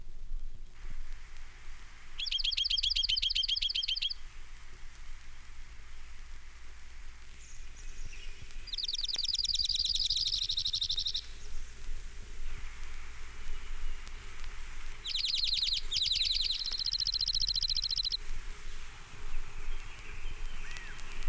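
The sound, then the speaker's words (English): An Oregon junco sings three separate high, rapid trills, each lasting a couple of seconds with pauses between, over a steady low background hiss. “Oregon Junco, 9 examples.”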